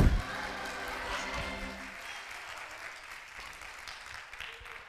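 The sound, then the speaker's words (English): An audience claps their hands to thank God, in steady, dense applause that carries on through the whole stretch, with a low sustained musical tone underneath during the first couple of seconds before it drops away. “Clap your hands. Tell God thank you.”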